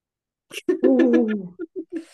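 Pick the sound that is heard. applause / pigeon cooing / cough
pigeon cooing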